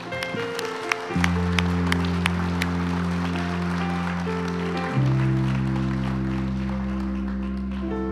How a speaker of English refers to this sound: Ooh, we probably ought to do some clapping on that.